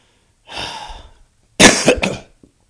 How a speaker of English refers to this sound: I'm not even getting sick, but I'm coughing anyway. I'm not sure what's going on. I just don't like the way I feel.